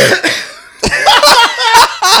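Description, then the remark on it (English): A series of loud coughs comes in harsh bursts after a brief quiet start, several in quick succession with a rough, throaty edge and no talking. “To be fair, I held that to cough in your face.”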